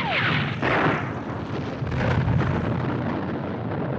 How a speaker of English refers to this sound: But, I mean, hey, she blows up a gas station.